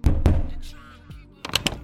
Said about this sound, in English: what's with the knocking? I have neighbors.